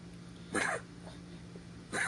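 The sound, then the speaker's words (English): An old female dog on medication coughs in two short, harsh, raspy bursts, the second cut off at the end, with a quiet pause between them and no talking. “This cough brought to you by Bella. Sounding rough. Yeah, poor dog.”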